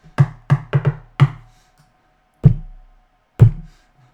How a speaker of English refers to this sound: I'm going to knock on the door in front of me.